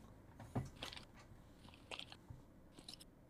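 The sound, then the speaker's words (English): Paper is crinkled to imitate a crackling fire: a few irregular bursts of dry, bright rustling and snapping crackles, fairly quiet and with no one speaking. “Crinkling of paper for a fire sound.”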